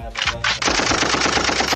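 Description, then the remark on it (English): A quick burst of rapid gunfire, starting with a couple of separate shots and then rattling off in a fast, steady machine-gun stream, loud with no talking. “Tutasema gunshot.”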